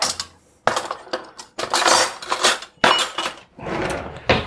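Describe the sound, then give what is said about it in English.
Eight ounces of self-raising flour is scooped and tipped into a bowl while being weighed out, in four or five rustling, scraping bursts, with light clinks of a spoon against the container and short pauses between scoops. No one speaks. “Weigh out 8 ounces of flour and hope I haven't forgotten anything.”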